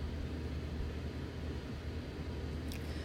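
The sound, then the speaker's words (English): A car's engine rumbles low and steady as it pulls up outside a house, a continuous hum for a few seconds with a faint high squeak near the end and no voices. “A car pulls up outside the house.”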